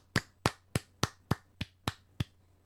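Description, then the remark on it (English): Eight crisp hand claps in a steady, even rhythm, fairly loud, from a single pair of hands rather than a crowd, with a faint low hum underneath and no talking; a host giving a round of applause. “And as always, we give you our round of applause.”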